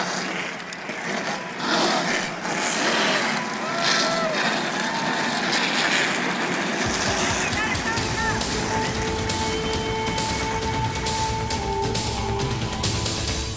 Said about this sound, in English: Drivers, start your engines.